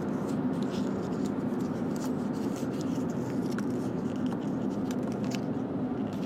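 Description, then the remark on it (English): Steady rustling of paper slips as a hand rummages through them in a hat to draw one, a continuous dry scratchy shuffling that lasts several seconds with no talking. “Let's pick from the hat. We have a couple things written down here.”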